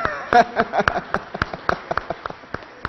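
A group breaks into light, scattered applause: sharp, irregular claps from several people overlapping unevenly for a few seconds, with no voices over them.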